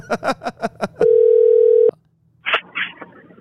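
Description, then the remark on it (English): A quick run of about six keypad dialing beeps, then one long, steady ringing tone of an outgoing phone call to a coach, followed by a pause and a couple of brief muffled noises. “I'm going to try to call Coach real quick.”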